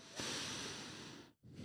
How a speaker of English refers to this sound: I'm not okay with you breathing in that microphone.